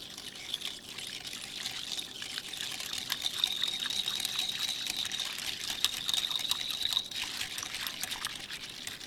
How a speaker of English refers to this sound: Okay, with the magic of post-production, I've already sped up this tape, but I've been basically whisking for the past 3-4 minutes, and it still doesn't seem like it's getting anywhere.